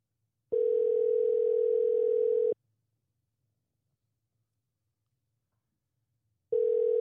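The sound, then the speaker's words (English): Ringback tone of an outgoing phone call: a steady electronic ring lasting about two seconds, a long silent pause, then the next ring starting. No one picks up or speaks. “All right, they didn't answer.”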